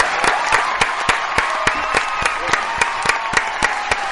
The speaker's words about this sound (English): Big round of applause for the King of Schmoeville. He leads the monarchy that is Schmoeville.